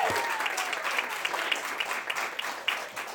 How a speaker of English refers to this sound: A rowdy, resounding round of applause for our last open micer in the first half